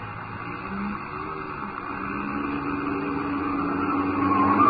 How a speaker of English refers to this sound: You turned that corner on two wheels.